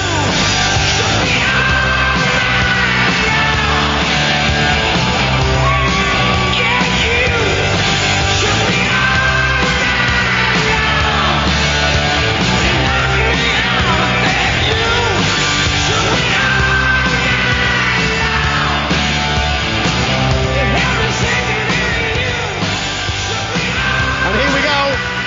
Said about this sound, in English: The crowd is going absolutely wild. Deontay Wilder, who made his walk maybe 5-10 minutes ago, is in the ring waiting for the Gypsy King still to enter. He's now partying with the crowd.